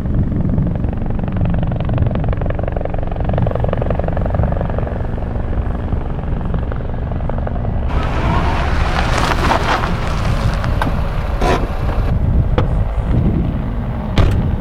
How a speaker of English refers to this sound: Helicopter inbound.